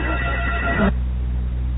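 A house's front doorbell rings once at night with a bright, buzzing tone for just under a second, then cuts off abruptly into a quiet, low hum. It is fairly loud, with no voices.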